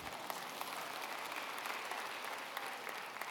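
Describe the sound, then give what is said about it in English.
A church audience clapping together during a service, a dense, steady patter of many hands with no voices over it, holding an even level for the whole stretch. “Somebody wanted to clap over there, and I think that'd be great.”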